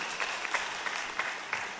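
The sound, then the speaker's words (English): An audience claps steadily to welcome the Executive Director of Mentor Me North Georgia to the stage, a dense wash of many hands with a few sharper claps standing out every so often, moderately loud and with no voices over it. “Can we give a big round of applause to Executive Director of Mentor Me North Georgia”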